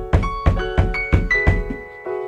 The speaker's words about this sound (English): Hold on. It's like the door. I'm just going to go get the studio door.